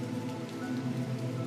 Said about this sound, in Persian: باران ببار، ببار و خیابانها را غرق کن.